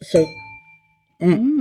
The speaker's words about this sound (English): Cheers to that. Yeah, that's a good yes. Cheers. Santé. Yes. Ding. Santé.